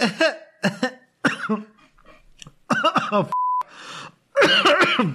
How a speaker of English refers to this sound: Oh, I actually made myself cough there. Ah, excuse me.